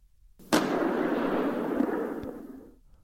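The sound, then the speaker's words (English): A single rifle shot, fired after the safety catch is clicked and the weapon raised, cracks out sharply, then booms and rolls on like thunder, a loud low rumble that slowly fades over about two seconds. No one speaks. “He heard Travis shift his rifle, click the safety catch, and raise the weapon. There was a sound of thunder.”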